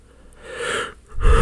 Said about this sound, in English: Had to yawn.